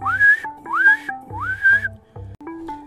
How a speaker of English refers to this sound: Bulma smirked, and then she whistled.